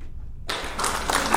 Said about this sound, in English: Oh, Richard Irvin. Hit the clap for Richard Irvin.